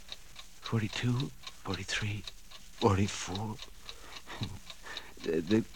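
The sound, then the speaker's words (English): Several clocks tick in a steady, even rhythm, the sharp clicks faint but constant beneath a man's voice speaking slowly and deliberately. “The clocks are beginning to look like people, like Mama.”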